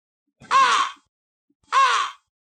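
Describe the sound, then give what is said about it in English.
Two loud, harsh caws from a large crow outside, evenly spaced about a second apart, each hoarse and drawn out, with silence between and no one talking. “You start hearing, then you all hear from outside, sound call of a crow. But it's a big one.”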